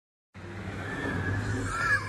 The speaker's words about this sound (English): This guy's laughing because I think the tractors are running the blockade. The police are like, you gotta stop.